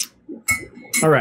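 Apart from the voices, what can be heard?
spoon stirring tea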